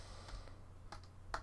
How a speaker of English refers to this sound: Yes. I'm typing now.